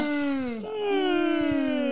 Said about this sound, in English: why is yawning contagious also? It doesn't make any sense.